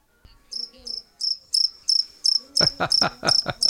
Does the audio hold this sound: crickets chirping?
yes